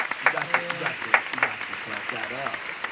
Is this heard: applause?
yes